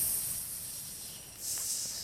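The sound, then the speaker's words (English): A voice imitates a snake with a soft, breathy hiss that runs steadily, then swells louder for a moment near the end. Fairly quiet, with no words spoken. “It's like the snake.”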